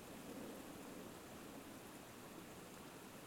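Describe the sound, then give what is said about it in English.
Steady, dense rushing of flowing stream water, a broad continuous hiss with a fuller low wash beneath it, unbroken and even in loudness throughout, with no voices. “Where we hear the sound of this water, we have safety and the most important resource, to use an ugly word.”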